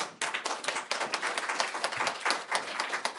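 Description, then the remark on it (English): An audience applauds Yang Fuchang as he is introduced to speak at a panel discussion: dense, steady clapping from many hands with rapid overlapping claps, sustained at an even loudness throughout with no voices heard. “Applause for Yang Fuchang.”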